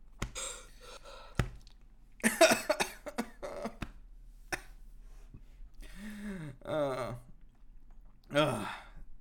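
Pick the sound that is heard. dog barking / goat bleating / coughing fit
coughing fit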